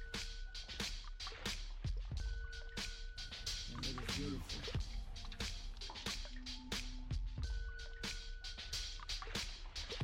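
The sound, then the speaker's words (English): A music track built around a water sample: dripping, splashing liquid sounds pulse steadily through the mix alongside sustained tones, loud and continuous for the whole stretch. “That water sample is kind of crazy.”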